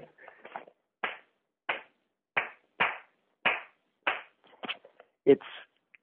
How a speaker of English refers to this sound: For instance, there's a rhythm that's really important to klezmer music. It's a Bulgar rhythm that I'll clap for you.